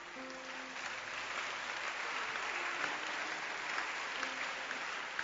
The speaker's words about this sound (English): I like your hand clap.